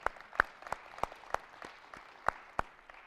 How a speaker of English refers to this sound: Good for you guys. Good for you. Let's give the sound booth a hand just real quick.